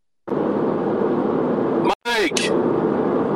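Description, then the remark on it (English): Steady, dense road-and-engine rumble from inside a moving car during a commute, heard over a phone line, briefly cutting out midway with a short garbled burst before the hum resumes. “You're in the car.”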